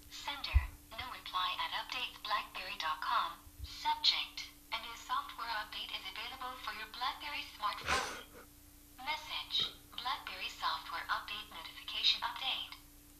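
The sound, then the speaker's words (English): A tinny, phone-speaker voice reads continuously for several seconds in even, clipped phrases, a synthesized text-to-speech app voice reading aloud an email update from BlackBerry, with a faint steady hum underneath. “BlackBerry just sent me an update, and the drivesafe.ly read it to me”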